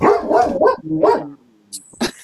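A dog barks several times in quick succession, fairly loud, with a short whine-like tone trailing off before a final sharp yip and a high electronic chirp.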